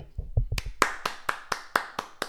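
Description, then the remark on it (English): One person claps their hands in a steady, evenly spaced rhythm, about eight sharp claps in a row, after a brief patch of muffled low thumps. No one speaks. “I thought the clap would be much easier to hear.”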